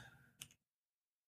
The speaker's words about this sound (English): Typing live on a live stream is bad. I don't recommend it because you're trying to rush and you typo every other word.